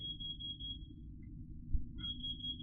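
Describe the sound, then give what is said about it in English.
A cooker timer beeps with a thin, high electronic tone, sounding as two long steady stretches separated by a pause of about a second, over a low continuous rumble and no talking. “I thought I could hear beeping.”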